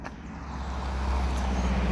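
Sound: car driving past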